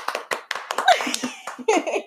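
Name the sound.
hands clapping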